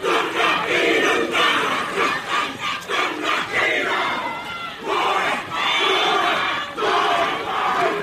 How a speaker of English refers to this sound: As Manuhiri walked onto Maungapohatu Marae, deep in the Urewera National Park, they were greeted with pelting rain and the chorus of Tūhoe's famed haka, Te Puru, ringing in the valley peaks.